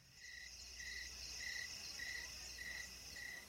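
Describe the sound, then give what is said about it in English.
Crickets chirp steadily in a continuous high trill, with regular pulsing bursts about every half second over a faint low background hum. Fairly quiet and even throughout, with no voices. “there's, like, some crowd noises, and then there's crickets.”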